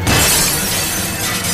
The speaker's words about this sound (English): The hammer that had been used to put her in that state was lying next to her. Not thinking about anything but my own safety, I grabbed it and began smashing the window.